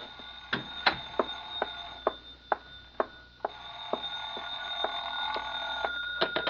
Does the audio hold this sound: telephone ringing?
yes